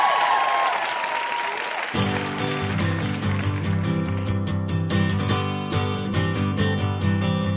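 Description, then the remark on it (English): A crowd claps loudly and steadily for about two seconds for guest W. Kamau Bell on the show Ask Me Another, then a band kicks in with bright, punchy music and drum hits while the applause fades beneath it. “Let's hear it for our VIP, W.”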